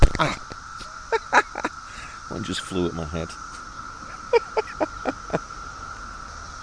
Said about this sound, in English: So they seem to prefer to walk or float a little bit over towards the trees, and then they slowly make their way up to the top for the big cicada party we can hear now.